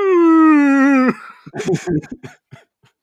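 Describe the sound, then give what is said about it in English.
A voice imitates whale song with a loud, sustained wail lasting about a second, its pitch slowly sliding downward, then breaks off into brief chatter and laughter. “And she was listening to a whale song CD, and it was just a load of whales talking about how they want to kill penguins.”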